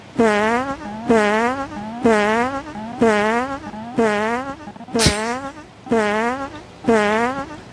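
A loud electronic fallout warning alarm, the signal meaning fallout is in the area, blares in a steady repeating pattern, about eight short buzzy rising blasts in under eight seconds, each one rough and harsh with a quick upward sweep.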